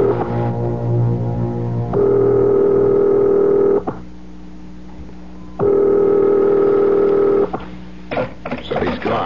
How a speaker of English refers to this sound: Dial. I'll call his private number.